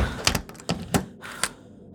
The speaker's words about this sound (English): She hopes with every step someone doesn't get out of the car and follow her into her apartment, even as she arrives and locks the front door behind her.